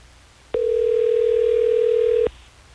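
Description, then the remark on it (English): A phone line ringing out as radio station Hot 101.5 in Tampa Bay calls a listener: a single steady electronic ringback tone sounds clearly for almost two seconds, then cuts off, leaving a quiet background. “let's get him on the phone so we can figure out exactly why he's being so shady”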